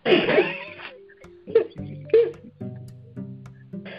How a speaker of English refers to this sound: No, I had to cough. I'm sorry.